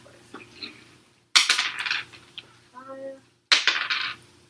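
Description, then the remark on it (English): A die is rolled twice for a sway roll: two sharp, bright clattering bursts, each rattling and skittering briefly before stopping, with a short hummed voice sound between them. “You can either roll that die twice, or you can use one of mine.”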